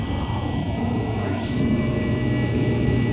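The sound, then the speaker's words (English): A steady, low furnace hum drones on without a break, a dense rumble with faint, thin tones riding above it and a slight swell in level midway through. “Like the hum of the furnace.”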